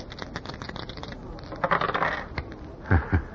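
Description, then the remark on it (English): Small hard objects, old dice being rolled, clatter and tumble across a surface in a quick rattling burst, then a couple of sharper knocks as they come to rest, moderately loud. “Hey, you have still got those old dice.”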